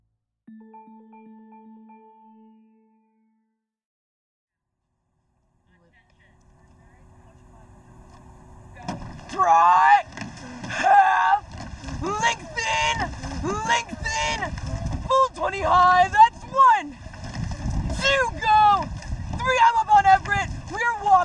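A rowing race with a coxswain shouting rhythmic commands over a steady wash of water and boat noise, the calls loud and insistent, building after a quiet opening with a faint hum.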